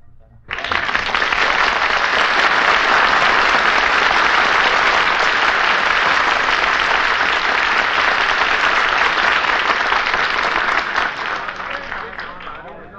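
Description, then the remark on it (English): A large crowd bursts into sustained, loud applause after a street song, starting abruptly, holding steady for over ten seconds, and tapering slightly near the end, with dense overlapping clapping and no talk. “Well, Curly, you drew a real big crowd.”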